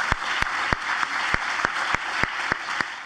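Steady audience applause for the Williams Institute, a dense wash of many hands clapping at an even level, with a few sharper, louder claps standing out at fairly regular intervals. No one speaks.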